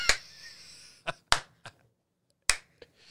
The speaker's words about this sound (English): Slow clap to you. Enjoyed it.